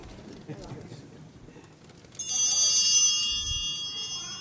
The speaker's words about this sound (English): I said that we would be having the ringing of the bells during the Eucharistic prayer. And that'll be for the first time since I don't know when. Now, the thing is, here's the bells. You want to hear what they sound like?